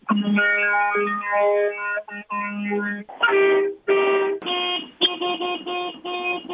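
A loud boat horn sounds in a run of brassy, multi-toned blasts: several long sustained notes shifting in pitch, then a string of shorter choppy honks. No one speaks.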